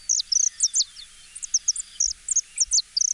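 Bright, whistle-like song of colorful birds native to South America and introduced to Hawaii, made of quick high-pitched chirps and short sweeping notes, repeating in lively bursts without pause, with no voices present.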